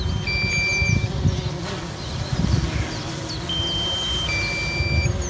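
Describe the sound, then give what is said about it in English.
A drone's low-battery warning beeps in long, steady high-pitched tones over the loud, continuous buzzing whine of its motors. There is no talking. “when the battery gets low, it makes the most terrifying beeping noise.”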